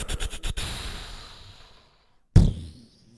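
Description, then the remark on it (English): A voice mimics an explosion to announce BROvember: a rapid string of sputtering mouth pops fades into a breathy rumble, then after a brief silence a second sharp, booming burst hisses away. “That was a terrible explosion sound.”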